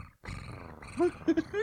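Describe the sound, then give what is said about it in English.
A voice imitates a cat's purr with a low, rumbling growl-like sound held for under two seconds, moderately loud, with a few brief voiced rises near the end. “He purred like a kitten.”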